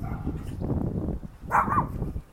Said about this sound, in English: There's your cute little puppy. Hi there. He's loud. You're a loud puppy.